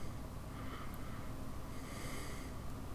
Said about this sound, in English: Sorry, I was trying to avoid breathing into the mic.